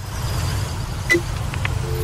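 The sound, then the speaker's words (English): Steady low rumble of road traffic at a bus stop, with a brief sharp squeak midway and a few faint, thin tones toward the end; no one speaks. “Anyway, we went down to the bus stop and we heard them issuing this warning.”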